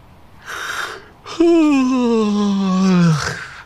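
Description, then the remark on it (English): A narrator performs a squirrel's big, drawn-out yawn: a breathy inhale, then a loud, long, descending moan that trails off, with no words spoken. “He yawned loudly.”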